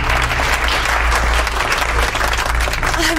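Steady, dense applause from a group fills the whole stretch, loud and close, with no pauses or individual voices standing out.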